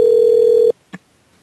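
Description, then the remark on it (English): A loud, steady telephone dial tone hums for under a second after a phone call is disconnected, then cuts off abruptly, followed by one short click and quiet. “I think we got disconnected.”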